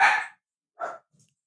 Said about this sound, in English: Dog, shut up.